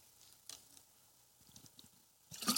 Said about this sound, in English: Water break again, sorry.